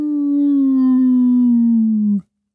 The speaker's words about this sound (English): About a mile away, we hear the piercing howl of some majestic wolves.